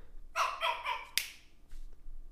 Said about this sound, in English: The dog's barking.